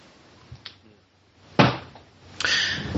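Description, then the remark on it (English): A desk drawer shuts with a solid thunk, followed by a rough sliding scrape of wood on wood, with no talking. “No, sorry, that was my drawer closet.”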